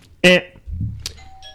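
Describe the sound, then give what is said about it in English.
A quiz game buzzer sounds with a short, loud, bright electronic tone, followed by a quieter second chime and a faint lingering tone over low background rumble. “Authentic buzzer there,”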